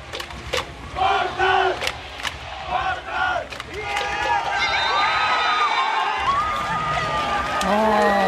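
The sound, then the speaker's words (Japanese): The game-ending buzzer sounds as Volters Kumamoto win 85–78 away in Nagoya, clinching third place in B2 and a promotion playoff spot; fans burst into loud, sustained cheering and shouting, with excited voices rising in bursts at first and then merging into a continuous roar of celebration until the end. “試合終了のビザーが鳴り、入れ替え戦進出を決めた瞬間です。”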